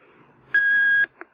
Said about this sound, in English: However, if you'd like to leave one, wait for the beep.